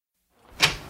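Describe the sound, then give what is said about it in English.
A front door is opened to let a visitor in: a soft rising rustle of movement, then a sharp latch click followed by another quick click as it swings free. No voices are heard. “I'm at the front door. Right. Hang on a sec. I'll walk down and let you in.”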